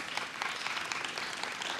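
An audience applauds, many hands clapping in a dense, steady patter of crisp bright claps that holds at a fairly even level throughout, with no voices standing out.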